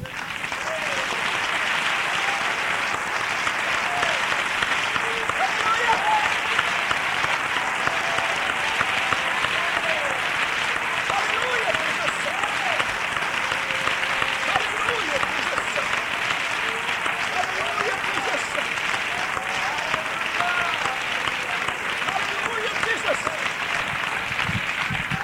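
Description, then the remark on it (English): An audience claps steadily for about twenty-five seconds, a dense, even wash of applause with scattered cheers and voices rising through it at a constant, fairly loud level. “Now let's clap again.”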